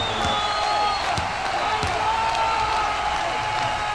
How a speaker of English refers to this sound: You hear the chants, you already know what it is, man.